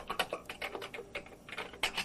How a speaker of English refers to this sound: The hospital gave Miguel this fancy new text-to-speech keyboard.